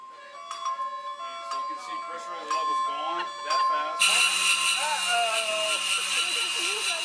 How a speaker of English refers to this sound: They simulated a bad scenario for us so we could hear what the alarm system sounds like. And as it continues to elevate, the alarms increase.